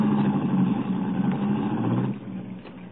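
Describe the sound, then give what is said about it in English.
A car engine hums steadily as the vehicle drives along a road toward Center Marsh, a low continuous drone with road rumble that eases slightly near the end. No one speaks. “Well, don't get out of the car.”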